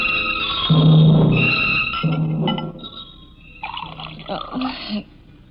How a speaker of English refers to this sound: I'm just pouring myself a drink.